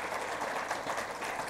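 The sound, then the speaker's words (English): A crowd applauds steadily, a dense crackle of many hands clapping at once, holding an even loudness throughout with no voices heard. “If you could give John a round of applause for doing what he does.”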